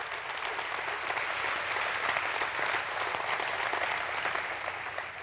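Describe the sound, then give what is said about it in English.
An audience breaks into sustained, energetic applause, joining applause given at its Cary campus meeting in Cary High School, a dense wash of many hands clapping steadily for several seconds with a few whoops mixed in, no speech over it. “By the way, they just gave raucous applause to that line over at Cary. Why don't we join them in that?”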